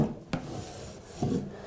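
A wooden drawer scrapes open with a dry, rasping rub, starting with a sharp knock and ending in a second grinding push, fairly quiet with no voices.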